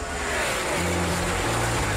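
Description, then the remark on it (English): A loud engine roars and revs, its pitch stepping up in distinct shifts over two seconds, like a race car accelerating through gears. “Milwaukee, start your engines.”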